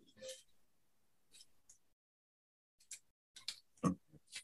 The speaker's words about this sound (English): Okay, let me grab Romans 3 real quick. Let me just go there. I'm turning the pages so violently.